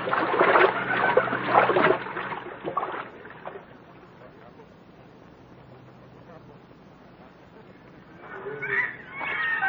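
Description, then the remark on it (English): Loud, churning splashes of people wading across a river, the water no higher than their hips, fill the opening seconds, then fade to a quiet watery hush before a voice and more movement return near the end. “We can cross the river here”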